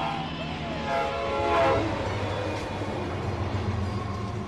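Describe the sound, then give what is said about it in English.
A train rolls past with a steady, heavy rumble and a sustained, droning horn tone that swells briefly before settling into a continuous roar, with no talking. “And if only that train had been 10 seconds faster.”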